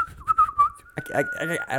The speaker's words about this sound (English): Like, if you hear him, it's like how does a human whistle that super, beautifully? Like, super clear. Super and clear. He's got a nice vibrato in his whistle. Yeah, like, weird vibrato in his whistling.